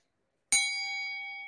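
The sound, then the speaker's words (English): A single bright bell ding strikes sharply after a brief silence, then rings out with a sustained, slowly fading metallic tone. “I think that whole spiel deserves, you know, a media nugget bell, because that is a very much, you know, real part of what we do.”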